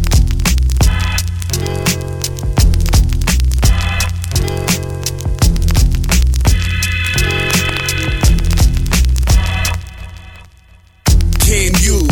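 A song plays loudly and up close, with a steady beat, heavy bass and sustained tones; it dips briefly near the end, then comes back in at full volume.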